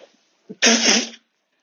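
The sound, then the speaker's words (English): A single loud sneeze from a person with a cold: a quick sharp intake of breath followed by a forceful burst lasting about half a second, then silence. “But you don't want to hear me blowing my nose, for example, do you?”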